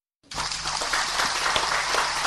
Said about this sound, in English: Hundreds of fans applaud as Cameroon's football legend Samuel Eto'o Fils announces that all local games, including league matches, will henceforth be broadcast live on local radio and TV stations.